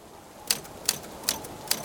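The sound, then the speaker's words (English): Four crisp typewriter keystrokes strike at a slow, even pace, each a sharp metallic clack standing out against quiet background hiss, with no voices present. “Profligator Daniel takes a break from banging the typewriter to indulge in some bug powder, and now we're all caught up.”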